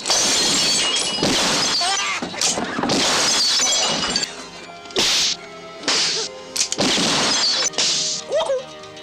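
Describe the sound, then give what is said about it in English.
Glass is struck and shatters again and again, a series of loud crashes with bright tinkling debris, spaced irregularly over a faint tonal background. “Gotta hit the glass before it hits the floor.”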